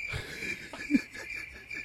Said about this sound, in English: When I put that in here, you said, when are you going to be using a cricket sound effect? I did, and WWE said, hold my drink.